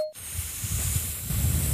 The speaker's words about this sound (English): That is also paper shredding.